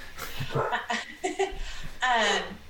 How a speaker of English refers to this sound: Pardon the hound. Their chicken. Oh, the chickens are on the porch. They can't. They can't not bark.